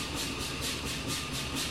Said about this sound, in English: Engine's working hard now.